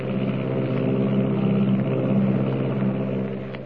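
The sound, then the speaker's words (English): A steady, loud engine drone of an Army plane flying at 300 miles an hour, with a low, throbbing hum and strong harmonic bands, holding constant without pauses or voices before easing slightly at the very end. “Is there someone lurking in the tail of the Army plane as it roars through the sky at 300 miles an hour?”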